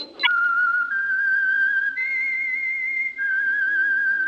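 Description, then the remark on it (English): Someone whistles a slow melody alone: long, steady, clear notes that step between a few pitches, loud, with no talking over it. The whistle is the signal for the Signal Oil program, The Whistler. “That whistle.”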